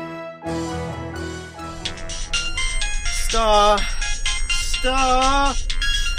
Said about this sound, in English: there's a call.